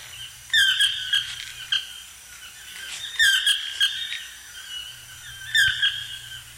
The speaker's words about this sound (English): That is the toucan. It's a very distinctive bird. It has a long, thick beak, and it comes in various colors, orange, white, and gray, sometimes yellow.